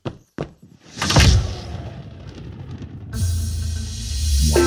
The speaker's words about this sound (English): Okay, closing the door now. Okay, no. I'm coming in.